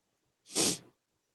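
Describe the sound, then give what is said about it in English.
A single sharp sneeze bursts out, a quick hissy blast of breath lasting about half a second, with silence before and after and no one talking. “I had that thing up there and I'm like, don't sniff. Don't sniff.”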